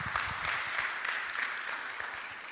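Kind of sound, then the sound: crowd, audience clapping hands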